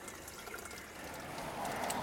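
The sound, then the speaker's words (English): Cold water pours steadily into a glass, a continuous splashing trickle whose pitch rises slightly as the glass fills. No one speaks. “Since it's called Aqua Fresca, we should probably get some cool water.”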